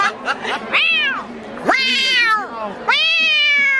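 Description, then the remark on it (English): A cat meowing sound effect: a cat meows three times in a row, each cry long, loud and drawn out with a rising-then-falling pitch, with no talking over it. “I'm the Cheshire Cat.”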